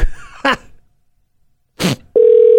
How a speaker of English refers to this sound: What the heck? Answer the phone! I'll leave a message.